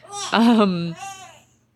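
A newborn baby babbles in a short vocal burst, rising then trailing off with a softer coo, no other voices present.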